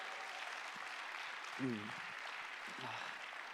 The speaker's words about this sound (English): the whole team here is absolutely fantastic, and I have really been blessed. Can you just give them a round of applause?